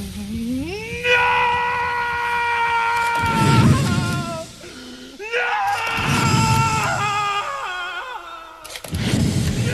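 In a film scene, a man screams a long, drawn-out anguished "no" to the sky, his voice rising and holding loud, breaking off and starting again, over bursts of low rumbling like thunder and storm noise.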